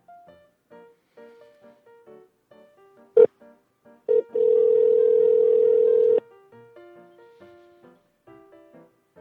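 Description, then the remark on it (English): A phone call being placed to a friend: a series of short tonal beeps, a brief burst, then a long steady ringback tone lasting about two seconds, followed by more soft beeps. No one speaks. “let's go ahead and let's call my buddy Chris”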